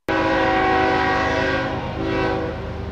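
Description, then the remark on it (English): A loud, sustained train horn blares steadily for about three seconds, its layered tones holding over a low rumble, with a slight dip and swell partway through. “All aboard, choo-choo.”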